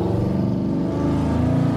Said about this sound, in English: Hear that truck? That's a truck. That looked like the way it should sound. It looked like a big, loud truck.